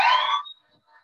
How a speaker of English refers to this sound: Some fire engines.